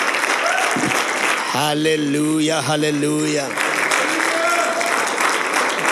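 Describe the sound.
An audience claps steadily throughout, a dense roar of many hands, while a man's voice calls out loudly over the applause in the middle.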